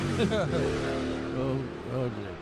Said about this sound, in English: Was that Rob Mark? I think that was Mark that drove by.